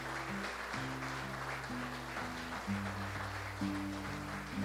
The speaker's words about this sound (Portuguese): Se é para o Senhor, acho que pode ser um aplauso melhor ainda, né?